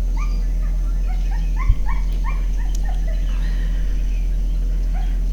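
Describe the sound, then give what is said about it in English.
A dog whimpers and yips in a rapid series of short, high-pitched whines, with one sharp bark-like thump partway through, all over a steady low background hum. “What is it's going to happen to the dog?”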